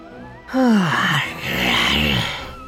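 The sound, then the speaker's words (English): A voice imitates a wailing siren with two loud, low swooping moans, the first sliding down in pitch and the second rising and falling, over a hiss of background noise. “You hear that siren?”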